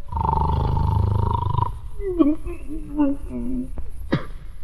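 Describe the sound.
A voice imitates the loud snore of the giant in the story of Jack and the beanstalk: a long, deep, rattling rumble, then a wavering whistly exhale that rises and falls, ending in a short sharp snort.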